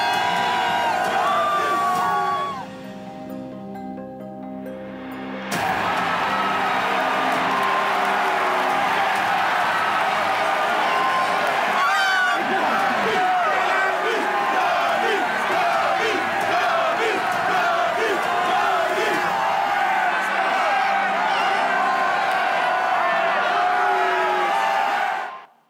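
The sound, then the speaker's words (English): Loud, sustained crowd roar with yelling, whoops and cheering from many voices at once, coming from bars, rooftops and everywhere around outdoors in Chicago as people celebrate the Cubs at the World Series, with a brief drop near the start before the noise surges back. “You hear yelling coming from every single bar, from rooftops, from everywhere.”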